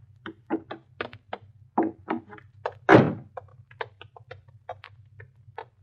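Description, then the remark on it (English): A locked nightclub door is tried at almost 4 o'clock, its handle rattling in quick, irregular clicks with one heavy thunk midway as it catches, over a low steady hum. “Well, we'll try it anyway.”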